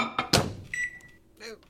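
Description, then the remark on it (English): A microwave oven door shuts with a couple of clunks, followed by a steady electronic beep and the start of the oven running to heat a bowl of canned soup, with no talking. “Here, I'll just open a can of soup and pour it in a bowl and pop it in the microwave.”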